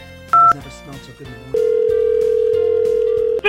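A brief high beep, then the steady buzzing ring tone of an outgoing phone call to someone picked at random, holding for about two seconds, over a faint background bed.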